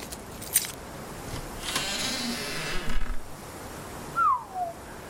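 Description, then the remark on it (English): A bunch of keys jangles and clinks for a few seconds as a chalet door is unlocked, followed by a short rising-then-falling creak like the door swinging open. No one speaks. “Has keys for all the chalets. He'll let you in.”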